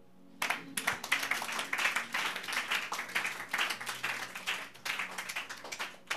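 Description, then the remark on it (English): An audience breaks into steady applause, many hands clapping together in a dense, bright patter that starts suddenly and holds at a fairly even level throughout. “Clap.”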